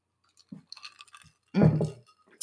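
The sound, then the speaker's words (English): A few light glassy clinks and rattles, like ice shifting in a glass of iced tea, followed by a louder slurping sip of the iced tea. No one speaks. “I'm drinking iced tea today. And I'm drinking water because I'm hot.”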